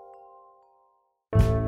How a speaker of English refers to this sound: Woodstock Chimes, the world's favorite wind chime.